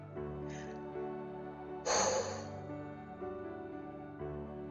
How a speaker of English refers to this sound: When we take deep breaths like that, it kind of feels like taking up more space, doesn't it? Like we're breathing in more space to think and to process things going on.